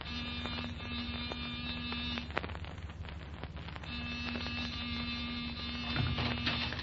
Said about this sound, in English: All right, Wolf. Give the buzzer a punch.